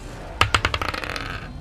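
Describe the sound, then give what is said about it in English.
Dice rolled during a tabletop role-playing game, landing on an 8, clatter across a hard tabletop, a rapid run of sharp, bright clicks that start loud and bounce quicker and softer until they settle into a short rattle and stop. “I rolled another 8, but this time it's minus...”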